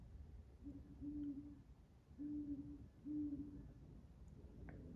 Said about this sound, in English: That was an owl. That was not a prop.